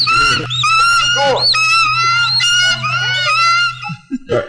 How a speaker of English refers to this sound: Hear the birds. And here they come. Here they come.